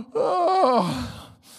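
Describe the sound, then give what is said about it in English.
A single drawn-out yawn, fairly loud, its voiced tone swelling upward then sliding down into a breathy exhale over about a second, with no talking. “I made you yawn.”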